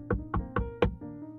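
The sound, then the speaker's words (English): Four gentle knocks on Freddy Frog's wooden log house door by the river in a steady, even rhythm, the last one a bit firmer, followed by a soft sustained tone in the background. “Barnaby walked down to the river and knocked gently on Freddy's log house door.”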